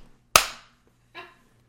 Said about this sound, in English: That's why I clap so you can cut between claps.